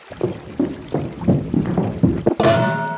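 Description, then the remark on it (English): Repeated sloshing bursts of water churn along for a couple of seconds, fairly loud, then a sudden brighter, louder surge breaks in at the very end as a troll is knocked into the water by a billy goat. “The troll was frozen in fear, and the biggest billy goat knocked him right into the water.”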